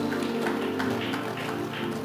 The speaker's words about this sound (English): Give the Lord a good clap of praise.